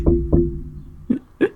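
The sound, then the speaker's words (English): Four dull, low knocks on a door, two close together, a short pause, then two more, heard alone over a faint steady hum. “So hear a knock at the door.”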